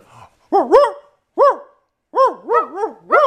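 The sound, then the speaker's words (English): A person imitates a dog barking at a real dog, voicing loud, wavering woofs in short bursts: one bark, a pause, another, then a quick run of three yaps. No other voices. “We gonna bark at the dog.”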